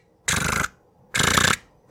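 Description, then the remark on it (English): In a video game, a woman character walking through hallways clicks a switchblade in short, loud bursts of rapid metallic ratcheting, each lasting under half a second, repeating about every second with silence between and no voices. “She's just clicking the switchblade, and you're going through these hallways and stuff, trying to get, get further in the game.”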